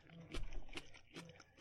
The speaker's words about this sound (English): You can hear them chewing.